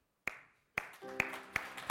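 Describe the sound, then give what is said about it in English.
A standing audience claps in unison: five sharp, loud claps at a steady, slightly quickening beat, with soft sustained musical tones coming in partway through. No one speaks. “And I want you to start clapping.”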